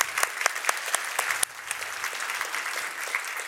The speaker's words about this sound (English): Yes, an applause.